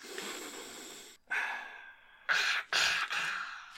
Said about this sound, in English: Sniff.